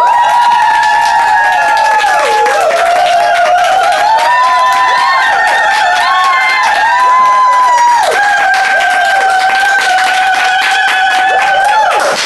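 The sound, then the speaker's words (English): A loud crowd screams and cheers continuously, high shrill voices sliding up and down over dense rapid clapping, sustained at full intensity for the whole stretch. “And remember these screams and claps.”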